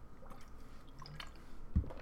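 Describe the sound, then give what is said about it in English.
A quiet slurp of fizzy soda pop, with small wet mouth sounds and a soft swallow building toward the end; no one speaks. “And I'm going to take a sip of my pop from that.”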